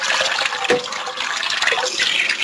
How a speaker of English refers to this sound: And oh, that's really doing the dishes. Yeah, that's the dishes.